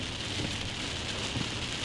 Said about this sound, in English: Oh, you hear those rain? Listen to this. That's what we're driving in right now. This is crazy. It's coming down in spurts. It's coming down. You guys can hear it all. Here it is.